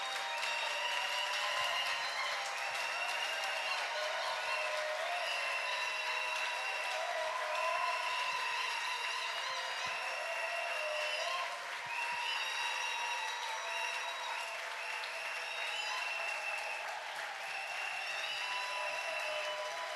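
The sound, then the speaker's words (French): An audience breaks into a sustained ovation for a person, a dense steady clatter of many hands clapping at an even loudness for the full twenty seconds, with no voices standing out. “Est-ce qu'on peut lui donner une salve d'applaudissements?”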